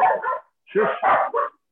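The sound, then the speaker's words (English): A person imitates a dog barking: a quick run of four or five short, gruff woofs, close and loud, with a brief pause after the first pair. “Yeah, your dog really likes the ending. He was talking about it. He's like, raw, raw, raw, I really liked it.”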